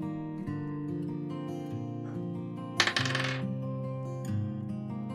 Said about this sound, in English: DM, would you let me roll a dice for this? Roll. Okay.